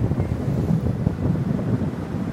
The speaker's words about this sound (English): that's an interesting helicopter. That's the military chopper right there